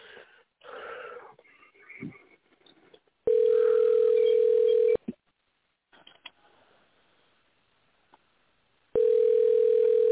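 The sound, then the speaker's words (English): A loud, steady telephone line tone sounds twice, each a long unbroken hum lasting a second or two, separated by a quiet pause, with faint handling noise and rustling before it, as a call is placed to a senator's office in the Sacramento area. “All right, let's call this office here.”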